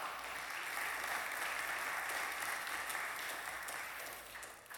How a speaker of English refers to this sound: Let's give that a big round of applause.